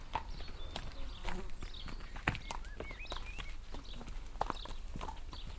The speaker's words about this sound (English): If you needed a delivery, well, then you would listen for the cart that would be coming with its horses, you know, and you'd know the kind of sound that you'd be listening for.